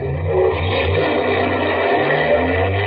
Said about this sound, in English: Starting the car. Here they come.